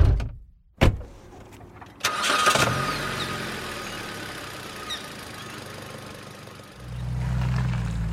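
A car door thuds shut, then another knock before the engine cranks and catches. It idles with a steady hum, and near the end a deeper rumble rises as the car pulls away from a house.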